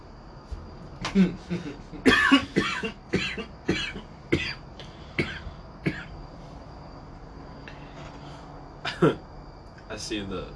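A person coughs repeatedly in a loud fit of sharp bursts over several seconds, pauses briefly, then lets out one more cough with a bit of throat clearing.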